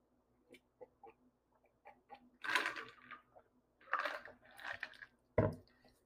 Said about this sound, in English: I'm going to take a sip of my drink.